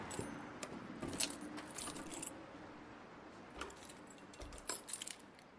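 keys jangling

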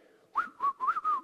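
person whistling a tune

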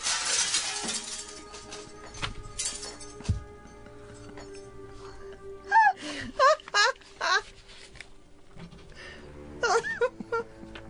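glass window shattering

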